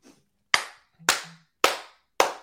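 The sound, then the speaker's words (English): Four sharp hand claps in a slow, steady rhythm, each crisp and bright with a quick fade, with no voices around them. “We're getting the baby face clap going.”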